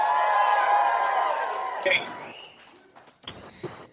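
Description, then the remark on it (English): A live crowd of about 350 people at the Bell House in Brooklyn, New York cheers and whoops loudly, a dense wash of many voices that gradually fades after about two seconds, leaving a few scattered shouts and calls. “There's about 350 people here at the Bell House in Brooklyn, New York tonight.”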